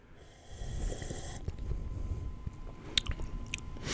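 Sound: sipping wine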